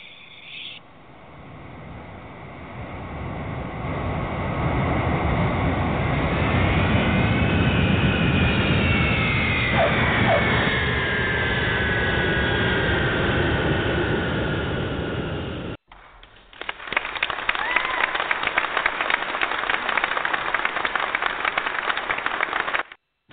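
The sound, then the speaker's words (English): A jet airplane roars loudly, its whining turbine pitch sliding downward as it lands, then a steady, rumbling engine drone continues as it taxis, with no voices. “Let's put the airplane on the ground, okay?”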